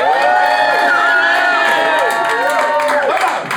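A live audience cheers and whoops loudly and continuously to vote for the winner of a gammon ham versus halloumi competition, with many overlapping high-pitched shouts and rising yells blending into a sustained roar that stays steady throughout.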